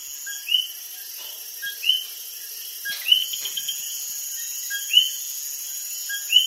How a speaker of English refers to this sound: Before we go, we leave you in Las Marias, Puerto Rico, in the company of Coqui frogs.